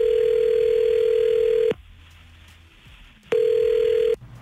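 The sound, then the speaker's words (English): A telephone line's ringing tone on a call placed by 99.9 Virgin Radio: two loud, steady electronic hums, the first lasting nearly two seconds, then a quiet pause before the second, heard clearly through the receiver with no voices. “So we're gonna give her a call. You're going to be listening on the phone.”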